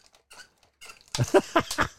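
A spinning ball machine called Merv squeaks in a quick run of repeated, high-pitched chirps as it spins the balls, faint and scattered at first, then louder and more rhythmic in the second half, with no talking.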